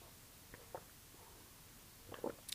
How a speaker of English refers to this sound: I've just got to have a sip of coffee before I tell you guys about this.